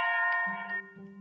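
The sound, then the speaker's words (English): A clock chimes the hour with bright, ringing bell tones that overlap and sustain. A lower chime enters partway through and hums beneath the fading higher notes. No one speaks. “Was that 6 o'clock? I didn't count the chimes.”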